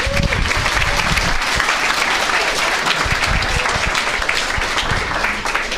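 An audience of young writers applauds steadily for several seconds, a dense, sustained wash of many hands clapping at once with no voices rising above it.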